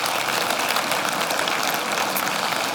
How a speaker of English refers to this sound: I just want to take a moment to recognize all of that hard work, so thank you. As the ladies make their way back to their seats, would you just give them another round of applause? Make them feel the love.